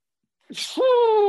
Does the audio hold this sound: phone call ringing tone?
no